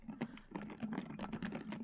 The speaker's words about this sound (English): Some ASMR of my water bottle.